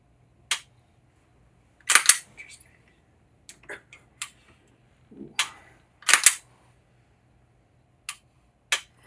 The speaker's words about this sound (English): So I like the trigger pull, but the reset is ambiguous. I'm not exactly sure. I almost short stroked it.